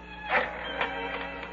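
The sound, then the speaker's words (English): A telephone being dialed after the receiver is picked up and put down: a handful of short mechanical clicks and whirring bursts at uneven intervals, fairly quiet, with no voices. “Now, with my left hand, I'll just pick up this phone. I'll put it down and dial.”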